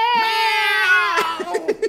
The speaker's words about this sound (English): We're moving on to a cat meowing.